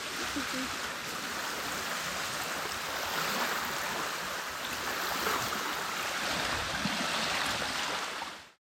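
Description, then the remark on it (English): Steady, rushing wash of waves on a shore, a broad continuous hiss with gentle swells in loudness, heard on its own before it cuts off abruptly. “You can hear the waves.”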